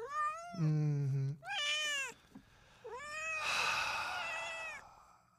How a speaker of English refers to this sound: That's the one right there. That's the one. That's the one that's by my house. I recognize the meow. That's the one by my crib. That's the one.